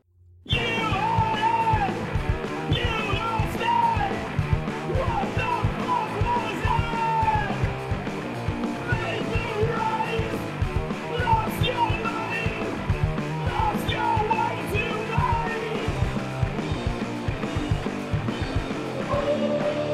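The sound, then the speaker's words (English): Loud, dense heavy metal with low, distorted guitars in drop D tuning chugging over pounding drums and steady crashing cymbals. A bass is played with slapping on the low notes, and a strained vocal line rides on top for the full stretch. “Fuck yeah, drop D tuning.”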